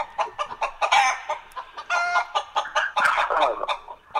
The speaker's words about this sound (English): Fred the chicken, Bingy's co-host we gave him. It's a chicken.